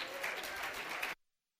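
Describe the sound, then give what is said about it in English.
An audience claps their hands in a dense, steady burst of applause lasting about a second, then it cuts off abruptly into silence. “Can you clap your hands?”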